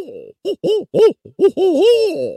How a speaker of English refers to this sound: My owl call.